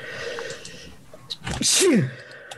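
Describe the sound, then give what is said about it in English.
A single sharp sneeze bursts out, a quick breathy inhale then a loud hissing explosion with a falling vocal tail, over faint background noise. “Bless you.”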